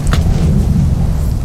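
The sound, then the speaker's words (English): A jet aircraft roars overhead, a loud, steady, deep rumble that holds its level throughout, with no voices over it. “That's a big plane. Big plane or no? It's not a jet. That's a jet.”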